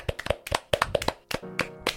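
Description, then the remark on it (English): Hands clap in a quick, slightly uneven flurry of about a dozen sharp claps, fairly loud, like a small round of applause with no talking, given as a shout-out to a supporter. “So, Ethan Malcolm, we can give him a big clap.”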